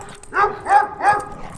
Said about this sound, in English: I got this dog. That's not just a dog. It's a hellhound. It'll rip you apart.